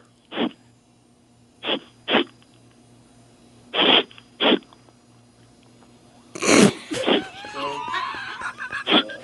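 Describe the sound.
A voice imitates a dog sniffing on the other side of a privacy fence with short, sharp breathy bursts in an uneven rhythm, then gives way to voiced chatter and a few more quick sniffs at the end.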